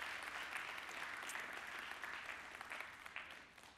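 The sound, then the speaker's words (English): An audience claps their hands to thank God, in sustained, dense applause, a steady wash of many overlapping claps that holds fairly loud before easing off slightly at the end. “Come on and clap your hands and thank God for a power that is available to you today.”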